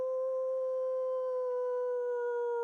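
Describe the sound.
A voice imitates a wolf howl: one long, steady, sustained tone held evenly for a couple of seconds, fairly loud, with no other sounds around it.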